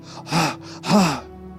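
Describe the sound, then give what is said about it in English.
A voice imitates a deer panting: two loud, breathy gasps in quick succession, each with a hoarse voiced edge, followed by quiet. “He wants more filling of the Holy Spirit, like a deer continuously panting.”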